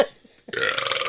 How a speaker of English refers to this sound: Sorry, I got a big, huge fucking burp coming.